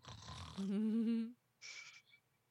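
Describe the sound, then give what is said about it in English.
A person makes a loud snoring imitation: a rasping inhaled snore with a buzzing, wavering tone, then a short breathy snort-like exhale after a brief pause. “Just all of a sudden, that's you snoring.”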